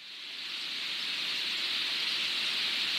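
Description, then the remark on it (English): Thousands of western sandpipers feeding at a migration fuelling stopover, their countless high calls blending into a steady, hissing wash of chatter that holds evenly throughout, with a faint low rumble of the Vancouver Fraser River Port in the background. “This is what thousands of western sandpipers sound like, a mix of the birds as they feed and the port in the background.”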